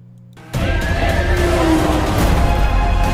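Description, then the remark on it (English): A horse, ridden through a city in a movie scene, whinnies amid a loud, steady rumble of noise that kicks in abruptly after a brief quiet moment, the neigh rising and wavering for a couple of seconds. No one speaks. “He's on a horse riding through the city.”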